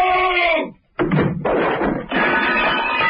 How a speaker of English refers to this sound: No! The silence was shattered by a terrible scream and a crash.